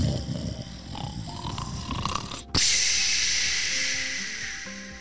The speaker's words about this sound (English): It always kept William up at night when … would snore because he was a very loud snorer.